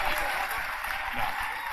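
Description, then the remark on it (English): Steady crowd applause, a dense wash of many hands clapping at an even, fairly strong level for the whole stretch without letting up. “Let's bring in the real crowd.”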